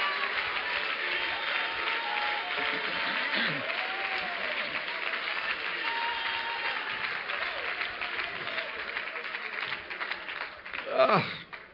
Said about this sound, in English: Clap your hands again and shout to the Lord for just a moment.